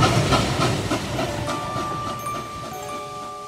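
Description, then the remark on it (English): A train rumbles along the tracks, wheels clacking rhythmically over rail joints at first, then a sustained high metallic whine rises above the steady roar as it rolls past. “And the Niles Film Studio's proximity to train tracks became an insurmountable problem.”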